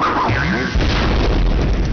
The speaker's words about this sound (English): We are going to listen to the Jester sound effects in this game.